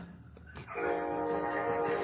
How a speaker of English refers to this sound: Hear that bell?